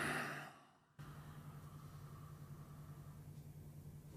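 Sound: exhaling through the nose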